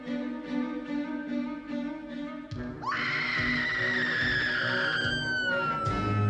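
A woman's long, piercing, agonized scream, as if being tortured, suddenly erupts after a few seconds of tonal, music-like sound, holding a high, strained pitch that slowly sags before breaking off, loud.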